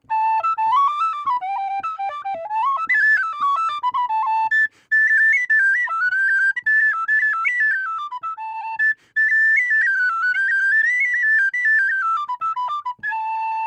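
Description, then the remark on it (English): A tin whistle plays a brisk, ornamented traditional reel on its own for St. Patrick's Day, the bright melody running quickly up and down in a steady, lively rhythm, fairly loud throughout. “Probably a reel, the favorite type of tune of traditional musicians everywhere.”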